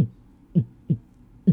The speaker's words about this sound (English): If you can't hear that, it's my heartbeat, okay? I'm freaking the fuck out.